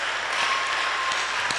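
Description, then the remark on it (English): A church audience claps steadily, a dense wash of many overlapping hand claps at moderate loudness, with a few sharper individual claps standing out. “I thought you were clapping. Some of you are not clapping.”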